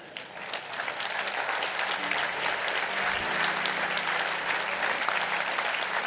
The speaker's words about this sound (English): All of us ought to leave here tonight clapping our hands saying, I'm so glad I'm on God's team.